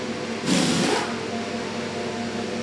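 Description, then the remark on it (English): The Mercedes 2023 Formula One car's engine revs sharply in a single brief, loud burst with rising pitch as the car leaves the garage for the first time, then drops away, leaving a steady low rumble of engine and background noise. “The Mercedes 2023 Challenger is out the garage for the first ever time.”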